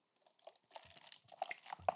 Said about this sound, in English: I'm gonna take a sip of beer here. It's been a minute. I'm gonna pour beer. Get to give you that beer pouring sound effect. You ready?